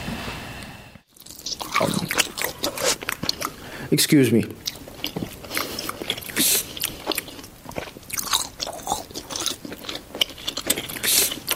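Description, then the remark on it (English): Wet, squishy chewing of kurukattai dumplings, with repeated bites and smacking mouth sounds over several seconds, interrupted briefly by a person speaking. “I'll tell you about my record-breaking kurukattai eating spree a little later.”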